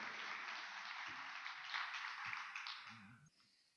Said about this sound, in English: let's give them a round of applause for helping us put this thing on.